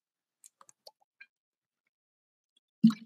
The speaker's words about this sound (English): Let me get a sip of water.